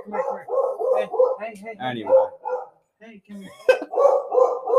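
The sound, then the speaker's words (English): A dog named Jameson barks in quick, insistent bursts, a rapid string of loud yips and woofs that pauses briefly, then starts up again just as energetically. “Hey, welcome to the podcast, Jameson the dog.”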